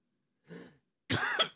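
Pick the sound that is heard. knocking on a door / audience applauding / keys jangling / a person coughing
a person coughing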